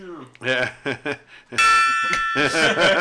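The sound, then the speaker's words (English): A gong rings out loudly partway through, its bright metallic tones sustaining and shimmering to the end while people keep talking over it. “That was the gong.”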